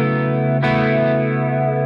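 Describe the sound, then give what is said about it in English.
A loud electric guitar chord, played through a subtle chorus/flanger pedal with the reverb turned off, rings out with a gentle shimmer, struck again partway through and left to sustain, with no voices. “there's something about the way it's being applied that's different than a regular chorus”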